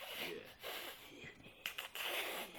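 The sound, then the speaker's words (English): A voice imitates a raspy, wheezing creature breath, with several harsh hissing inhales and exhales in a steady rhythm, fairly loud, with no words spoken. “And they walked, and they just, like, yeah, they're twitchy. And this is, like, it's that breathing, like...”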